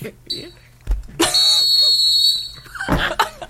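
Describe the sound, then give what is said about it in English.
A sharp, loud referee's whistle blast holds steady for about a second and a half after a shorter, fainter toot, with a thump before and a clatter of noise after. “That referee got ass.”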